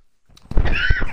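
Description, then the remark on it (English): A single muffled cough, turned away from the microphone, a rough, raspy burst that starts abruptly and trails off over about half a second, heard on its own with no talking. “I just coughed. I didn't want to cough directly into the mic.”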